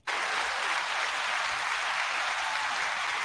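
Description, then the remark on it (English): A steady burst of audience applause, dense and even, starting abruptly and holding at a constant loud level throughout with no voices breaking through, welcoming the introduced president of 22 a Day Vet Lives Matter. “Everyone needs applause, brother.”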